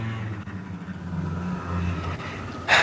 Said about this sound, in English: Hang on a second, there's a noisy bike outside my window.